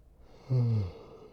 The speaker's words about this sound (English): I always wonder if I should leave those yawns in, but it seems like it's generally positive.